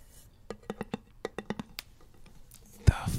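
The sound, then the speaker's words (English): ASMR clicking sounds: a quick run of about a dozen crisp clicks in short rhythmic bursts, followed by quieter scattered ticks and a sudden louder breathy rustle at the end, with no clear words. “Oh, people like that too, the clicking sound?”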